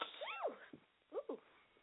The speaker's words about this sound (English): Ooh. Caught a sneezing tantrum. Whoa. Oh. Wait a minute. One more time. Oh. Ooh. Forgive me. And the summer's ending and my allergies want to mess up.